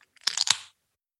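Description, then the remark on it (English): A can of Voodoo Ranger IPA (7% ABV) cracks open with a quick cluster of sharp, crackling snaps and a short fizzy hiss that fades within about half a second, heard on its own without talk. “Well, let's crack it open and see how it's going to compare.”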